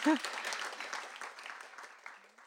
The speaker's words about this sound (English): Yes. Can we have a round of applause for Jen Wang?